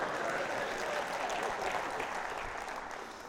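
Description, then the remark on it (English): A church audience claps for the speaker, a dense wash of many hands that holds even for a few seconds and thins slightly toward the end, with no voices standing out. “Did you want to clap for me?”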